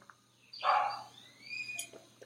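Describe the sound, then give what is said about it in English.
Dogs ward off intruders: one gives a sharp, fairly loud bark, followed by thinner, higher yelps and a brief second outburst, with no talking. “While you listen to my dogs ward off intruders, whatever that may be.”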